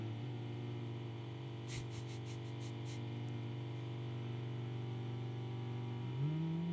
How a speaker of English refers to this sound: God, this fucking drilling. I'm into it. Just harmonize with it.